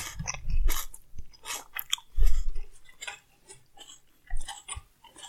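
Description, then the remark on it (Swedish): Loud chewing of food, with wet, crunchy bites and smacking that come in uneven bursts, some louder with low thumps, separated by brief quieter pauses. “Men du äter som ett rovdjur.”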